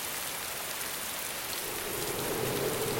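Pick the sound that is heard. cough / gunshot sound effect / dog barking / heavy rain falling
heavy rain falling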